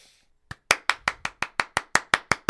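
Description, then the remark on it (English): Hands clap in a steady, fairly quick rhythm, about a dozen crisp claps from what sounds like a single person, following a brief quiet moment, with no talking. “Hold for applause. Hold for greater applause.”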